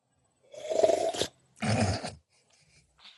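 Two loud, wet slurping sips of coffee in quick succession, each a rough, noisy burst lasting about half a second, followed by faint small sounds.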